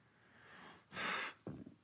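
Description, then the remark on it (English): A single sneeze: a sharp, breathy burst of hissing noise followed by a short voiced, throaty tail, rising out of quiet background hiss with no talking. “Excuse me. Bless you.”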